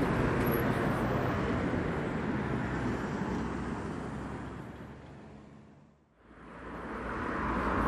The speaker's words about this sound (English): Now you hear the traffic start to pick up in a moment, or now even.